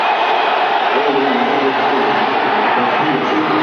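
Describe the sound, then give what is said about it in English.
The Dolphins football team cheers loudly on the sidelines after the kicking team is awarded the ball, a dense, steady roar of many shouting voices with whoops and yells blending together, continuous throughout. “And the Dolphins, as if they received an early holiday present, cheer on the sidelines.”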